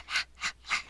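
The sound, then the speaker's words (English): Three raspy, airy breaths come in a steady rhythm, each a harsh hiss that swells and fades, an eerie breathing noise layered over a horror film score, with no talking. “And then it has that scary breathing noise on top of it.”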